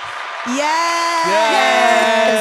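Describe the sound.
A canned applause-and-cheering sound effect: a steady wash of crowd noise with several voices whooping and holding loud, overlapping cheers that rise and shift in pitch for a couple of seconds.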